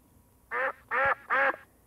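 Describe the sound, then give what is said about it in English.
A person imitates a duck with three loud, nasal quacks in quick, evenly spaced succession, with near silence around them. “And this is my great quack.”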